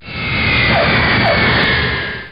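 A loud, steady roar of a jet airplane with a high whining tone drifting slightly downward, like an aircraft coming in to land, continuous throughout with no voices.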